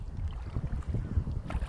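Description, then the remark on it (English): A steady, low motorboat rumble of ski boats passing on the water, dense and throbbing, with faint splashing and breezy hiss on top and no voices. “Trying not to get run over on these expensive ski boats.”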